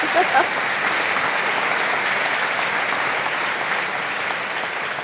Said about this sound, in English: Let's give her a round of applause for getting through that lightning round.